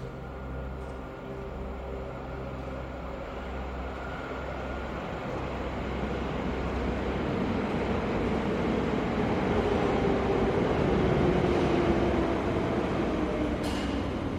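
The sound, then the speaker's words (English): The 1040 train, whose cars have been converted into homes, rumbles in, its low mechanical roar and rattling steadily growing louder, with a faint descending whine as it slows; no voices. “In 2 minutes, you shall have your wish when the 1040 arrives.”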